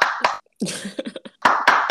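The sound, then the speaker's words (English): Scattered hand claps from one person clapping alone: a few sharp, bright smacks at the start and end, with a quicker run of lighter claps in the middle, mixed with a brief burst of noisy vocal sound. “I had to clap up for all myself.”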